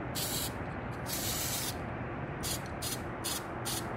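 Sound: spray paint can spraying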